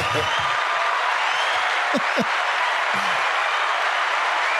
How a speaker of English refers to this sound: Quite the applause. Yeah, I thought that was. Yeah. I felt like you deserved it.